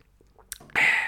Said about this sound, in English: Sip of water. Water break